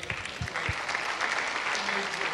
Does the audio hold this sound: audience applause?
yes